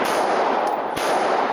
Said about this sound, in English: Moments later, more gunfire.